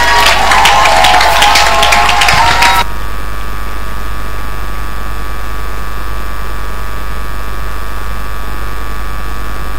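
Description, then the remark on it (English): An audience claps in a dense, crackling burst for about three seconds, then stops abruptly, leaving only a steady low electrical hum for the rest. “Oh, let's clap for Adani.”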